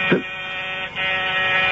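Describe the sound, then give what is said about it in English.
A door buzzer sounds with a harsh, steady electric drone, briefly cutting out partway through before buzzing again just as loudly. No voices accompany it. “Someone's at the door”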